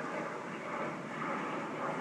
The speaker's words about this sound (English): And here comes that other airplane.